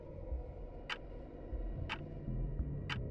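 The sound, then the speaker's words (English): A clock ticks steadily, three crisp, sharp clicks about one second apart, heard over a low, continuous background rumble with no voices. “Suddenly, she heard the clock ticking again.”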